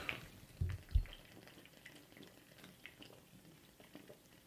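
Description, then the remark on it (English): Someone chugs a whole drink: a couple of heavy swallows near the start, then softer wet, sloshing liquid sounds that trail off quietly. No one speaks. “All right, we're going to chug the whole thing.”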